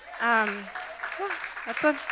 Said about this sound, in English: You know what, it is something to clap about.